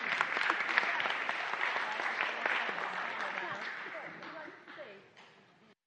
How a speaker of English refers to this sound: Let's give them a round of applause as they go.